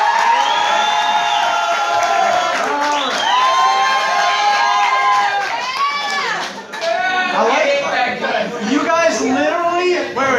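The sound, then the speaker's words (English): An audience erupts in loud cheering and whooping in response to a call for a round of applause, with many overlapping voices shouting excitedly and a dense wash of applause-like noise throughout, sustained for several seconds. “Like, you guys literally applauded like I was Oprah and I just said, hey, I got free cars everywhere.”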